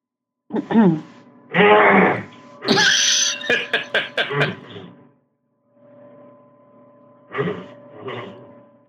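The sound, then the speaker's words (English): A man makes rough, throaty vocal bursts that end up sounding like a horse's whinny, a reflex he makes without realizing it when someone coughs, with a run of sharp clicks midway and two short, breathy bursts after a pause. “It sounded like a full on horse at the end.”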